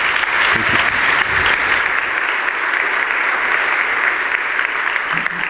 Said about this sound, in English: Y'all give her a round of applause.